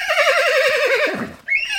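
animal, horse neighing

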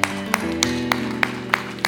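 crowd, audience clapping hands

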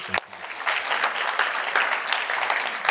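crowd, audience applauding

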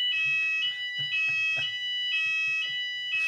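signal or alarm, fire alarm ringing

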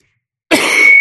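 human body sound, coughing fit

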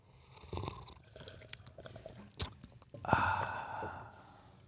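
food or drink, slurping tea

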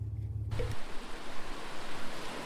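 nature, river water flowing

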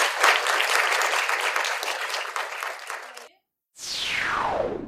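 crowd, audience round of applause

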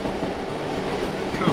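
vehicle, train arriving

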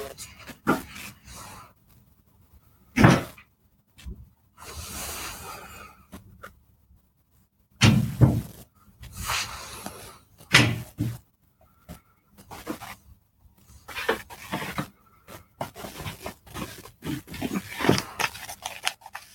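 household object, door opening and closing

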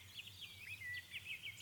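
insect, crickets chirping

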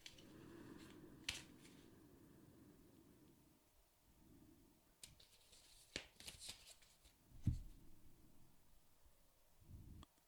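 household object, shuffling tarot cards

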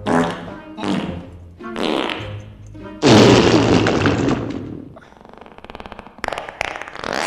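human body sound, fart

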